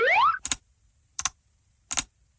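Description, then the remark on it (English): A short springy boing with a rising, wobbly twang from a bunch of clock springs opens, followed by three crisp metallic double clicks spaced evenly apart, fairly loud, with no talking. “It's a bunch of clock springs.”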